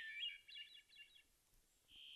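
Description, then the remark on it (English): A hermit thrush sings in a forest, not far off: a clear, flute-like phrase of rising and falling notes, followed after a brief pause by a single held tone, with no one talking. “And for many, it's the new voice that has chimed in the last few minutes. The hermit thrush.”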